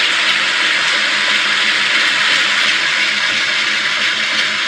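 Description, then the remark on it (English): A washing machine runs with a steady, unbroken whooshing hiss, loud and even throughout, with a faint low rumble beneath and no voices. “That is actually the sound of a washing machine.”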